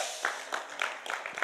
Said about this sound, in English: And I love the fact that here we are in Colchester, impacting an African nation. And those people are getting blessed. So give yourselves another round of applause.